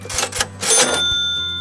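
A cash register rattles with a few quick mechanical clacks, then its bell rings out brightly and lingers over a clunking drawer, with no voices.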